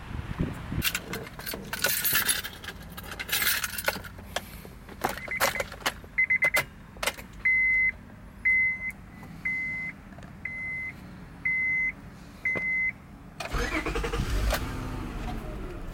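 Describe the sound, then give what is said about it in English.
Keys jangle, a steady series of evenly spaced electronic chimes follows, then a car engine cranks and roars to life loudly at the end, started after a new part was installed. “All right, she's installed. Let's see if she runs.”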